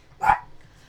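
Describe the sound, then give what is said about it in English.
A dog, Finn, lets out one short, sharp bark, followed by quiet room tone with no one speaking. “How's your dog?”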